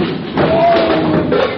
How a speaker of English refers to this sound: Well, folks, I fell over it again.